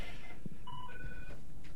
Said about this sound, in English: I want to hear that dial tone again. Let's see if we can hear it.